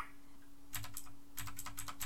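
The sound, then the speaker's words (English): Two quick bursts of crisp, clacky mechanical keyboard typing, with rapid keystrokes separated by a brief pause and a faint steady hum underneath. “It's a mechanical keyboard, baby.”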